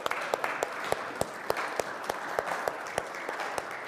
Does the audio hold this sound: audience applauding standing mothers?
yes